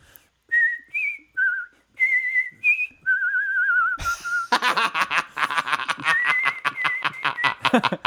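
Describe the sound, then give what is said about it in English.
A person whistles a quick run of short, chirpy bird-like notes as a bird whistle, ending in a longer tone, then breaks into breathy laughter for several seconds. “But can you do a bird whistle for me?”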